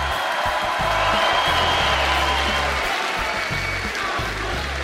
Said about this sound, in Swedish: Jag vill först säga att det inte bara jag som är hjält, utan det är hela laget som hjältar. En applåd för hela laget!